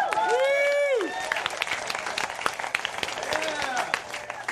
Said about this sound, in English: Everyone applaud. I just finished my last song. Sounds like a small venue. Okay, hold on. Do applaud again.